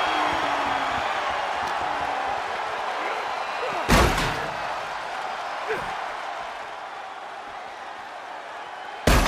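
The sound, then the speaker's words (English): In a wrestling video game, a heavy slam and clatter of a wrestler's body landing across a metal ladder, followed by a softer thud and another sharp impact, over a loud, constant arena crowd roar. “Austin drops him atop, across the top of that as well.”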